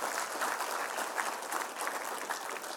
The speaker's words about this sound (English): Come on, give Jesus a hand clap of praise.